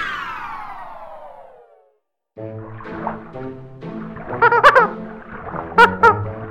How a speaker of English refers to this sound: Hello there, Mr. Whale. What brings you to this rub-a-dub-tub?